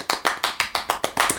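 Steady, evenly spaced hand claps given as applause for a rapper, about eight sharp slaps in quick rhythm, fairly loud with no voices over them.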